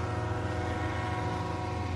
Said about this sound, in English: York has a bustling downtown, not so much from shopping, but from a highway that cuts right through it, and freight trains that come through the rail line.